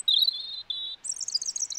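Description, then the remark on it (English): A European robin sings alone, clear: a sustained high thin note, a brief pause, another drawn-out note, then a rapid tumbling run of higher twittering phrases. “they're actually singing at that time because there's less noise from traffic and cars, and they can get their message across clearer to either their love interests or their rivals, which is, again, really adaptive and very cool behaviour.”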